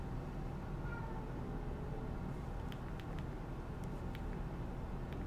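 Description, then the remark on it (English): A cat meows faintly once against a steady hiss of background noise, followed by a few soft clicks and taps. “Oh my gosh, I'm so hopeful that I got his meow in here.”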